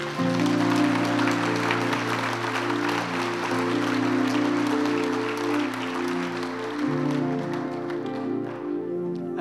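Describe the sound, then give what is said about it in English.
A crowd of people claps together in a dense, steady patter, with sustained keyboard chords holding underneath. It stays loud throughout and thins slightly near the end. “Come on, let's clap.”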